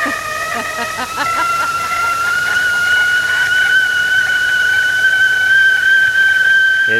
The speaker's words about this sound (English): So is the kettle ready? I think I heard it. Oh.